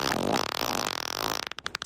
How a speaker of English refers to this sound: I'm so used to your farts at this point, I don't even see them as gross. You're having fun with them, and I love that.